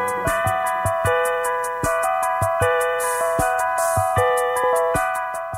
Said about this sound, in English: So was that like a preset on the... It is. Bells or something. But all the presets were on that one little Casio.